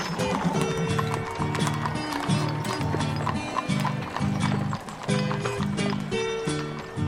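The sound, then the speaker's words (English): Many horse hooves clip-clop in a dense, continuous clatter during a gigantic horse procession held in October in the city of Bonito, with a steady, rhythmic melody played alongside throughout. “Still in the month of its anniversary, the Cavalgada de Bonito, a gigantic procession of horses included in the October calendar in the city, was officially created in 2015.”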